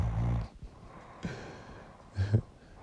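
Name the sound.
stomach growling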